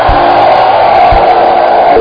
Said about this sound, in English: By the power of the Holy Ghost. Lift up your hands and give the Lord a shout.